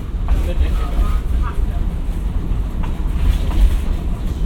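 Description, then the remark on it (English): Former South Shore line train cars rumble and clatter steadily along the rails at about their top speed, a loud, continuous low roar with faint rhythmic knocks, while muffled voices murmur underneath. “The top speed on these cars when they were running on the South Shore was about, there was two spots they could do about 80 miles an hour.”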